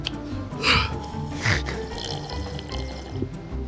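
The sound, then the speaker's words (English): Almond milk being poured into a cup, with two short splashy gushes followed by a steady, low trickle and faint handling noises, then what sounds like drinking. “I just need some liquid.”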